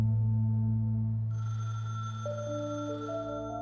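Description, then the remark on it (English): A telephone rings with steady, sustained electronic tones that hold and shift pitch slightly partway through, fairly clear, with no one speaking, as Peter places a phone call to a friend in January 1978. “And in January 1978, Peter places an alarming phone call to a friend.”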